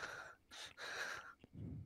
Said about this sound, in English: The heavy breathing.